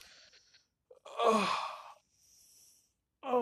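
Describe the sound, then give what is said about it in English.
A single drawn-out yawn after a workout, breathy and voiced, swelling then fading over about a second. Quiet breaths surround it, and another voice sound starts just at the end. “I'm taking all these yawn, or you can say these stretches, because I've just completed my workout.”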